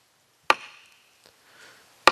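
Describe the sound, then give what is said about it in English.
A wooden block is struck twice as the call to meditation, about a second and a half apart. Each sharp, loud knock rings briefly with a hollow tone, slow and deliberate, with no voices. “This was the call to meditation.”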